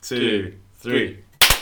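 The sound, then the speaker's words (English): Two brief voiced murmurs are followed by a loud, sharp hand clap, a single crisp smack with a quick doubled edge, like two hands not quite in unison, made as a ceremonial clap to sync up audio recordings. “Should we do a ceremonial clap for all the difference it ever makes to me trying to sync everything up?”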